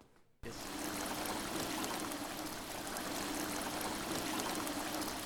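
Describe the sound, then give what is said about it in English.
Steady rushing water pours continuously after a brief quiet start, a dense, even splashing from an indoor waterfall inside the Royal Danish Library in Aarhus, Denmark, with no talking. “A waterfall inside a library.”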